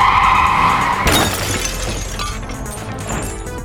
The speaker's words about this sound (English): so you slam on your brakes. The cat flies off your face and smashes into your windshield, and then you are immediately hit by a car going in the opposite direction.